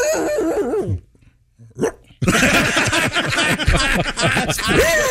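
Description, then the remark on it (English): A voice imitates a dog getting its last bark in at night: a run of loud barks and growly yelps, a short pause with one small yip, then a dense, energetic burst of barking to the end. “How come when dogs bark at night, they have to get that last bark in?”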